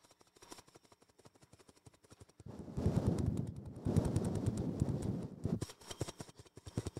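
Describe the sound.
A person vocally imitates a news helicopter with a rapid, steady chopping pulse, starting soft, swelling louder and fuller through the middle, then easing back. It is heard alone, with no other talk.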